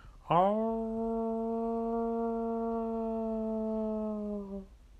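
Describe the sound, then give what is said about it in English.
Human voices imitate a wolf howl on a count of three: one loud, sustained note that swoops up at the start, holds steady for about four seconds, then trails off. “Bro, everyone, I need to howl. I need your help. Ready? On the count of 3.”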